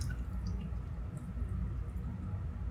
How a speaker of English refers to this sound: Keeps the bubbles out. Give it some air. To make sure wine tastes better. I do agree with that. So. And it lights up and it pours your wine in there for you.